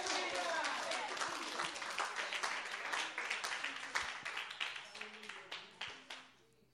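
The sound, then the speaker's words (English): A crowd at a prayer gathering for New York City claps together, a dense burst of applause that thins into scattered individual claps and fades out over several seconds. “Oh, come on, clap right there.”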